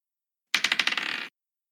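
Dice clatter across a hard table in a quick burst of rattling bounces that speed up and settle within a second, crisp, with no voices; the dice are rolled for a constitution check.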